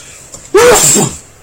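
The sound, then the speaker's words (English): A single loud sneeze bursts out suddenly, a sharp breathy explosion lasting about half a second before fading back to quiet room noise. “Every time I say the Today Show, it just makes me sneeze.”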